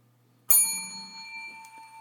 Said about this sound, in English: I'm going to wear that bell out today.